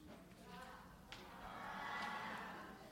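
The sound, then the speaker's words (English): A crowd of children bleat together like sheep, a wavering chorus of drawn-out baas that swells a little louder toward the end and fills the whole few seconds. “So if you're a sheep, you're going to need to baa really loud. Can I hear you?”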